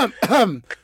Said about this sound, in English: Sorry, just clearing my throat. Just in case.